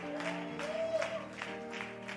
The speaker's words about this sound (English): That was a lot of walking and only five people are clapping.